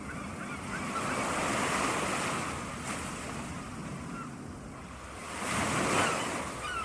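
Steady surf rolls in with a broad, hissing wash, swelling twice as waves break and recede, with faint honking birds mixed into the background.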